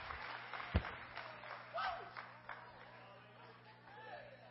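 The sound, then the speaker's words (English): Scattered hand claps from a church audience praising the Lord, irregular and fairly soft, mixed with murmuring voices and room noise. “Give the Lord a hand clap, somebody.”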